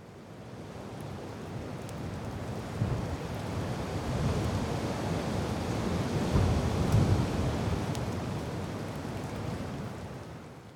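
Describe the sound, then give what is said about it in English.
Steady roar of gusting wind and crashing surf on a windy, rainy, stormy day on Koh Tao, a dense low rumble swelling and easing over several seconds, with faint buffeting against the microphone and no voices. “It's another windy, rainy, stormy day on Koh Tao.”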